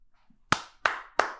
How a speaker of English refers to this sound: See, you've developed this thing now where you clap for yourself. Thank you. And I don't like that at all.